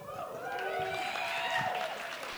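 An audience applauds steadily, a dense wash of clapping mixed with cheers and whistles that holds at an even level for a couple of seconds.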